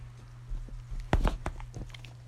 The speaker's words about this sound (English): That is her ripping apart this chair because she's bored.